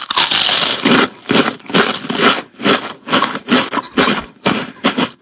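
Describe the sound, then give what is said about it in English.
Loud crunchy chewing of dry pork, played from a sound effect board, with about nine sharp crunching bites in a steady rhythm and no voices. “But it did sound like you when you were chewing.”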